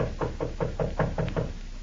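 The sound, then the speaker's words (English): A quick, even run of about seven knocks on the door of room 302 in a corridor of a large New York hotel, moderately loud, with no voices, just a low background hum. “raises his good arm to knock on the door of room 302, then pauses.”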